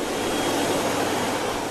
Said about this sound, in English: An electric foot dryer. It looks just like a hand dryer, except that it's placed near the floor at an angle comfortable to dry your feet.